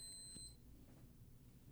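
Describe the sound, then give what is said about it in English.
A single short, high-pitched electronic beep sounds at the start, thin and fairly quiet, then fades into low room hum with no one speaking. “Something just beeped in here.”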